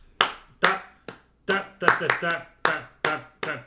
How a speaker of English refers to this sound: I'll clap too, but it doesn't have anything to do with finding it. Stop clapping.